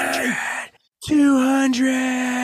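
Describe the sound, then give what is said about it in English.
A single voice imitates a roaring, cheering crowd while welcoming a guest back to a show: a loud sustained bellow, a brief break, then a long steady yell at one pitch. “The crowd goes crazy.”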